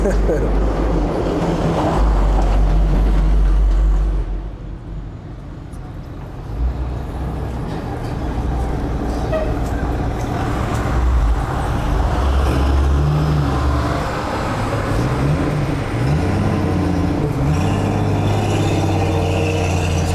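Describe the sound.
A large school bus rumbles along the road with a deep, steady engine drone that swells and shifts as it passes, with muffled voices underneath the traffic noise.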